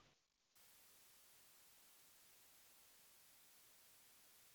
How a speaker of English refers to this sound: because there was a little interference with our reception connectivity. Could you repeat that statement?